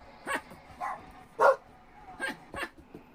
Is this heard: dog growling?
yes